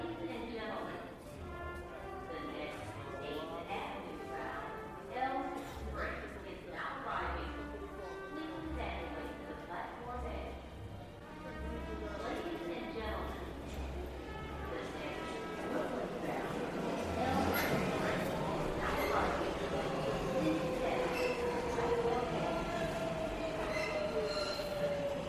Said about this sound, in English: So let's start with the subway, because this is probably the prototypical city sound for me, at least.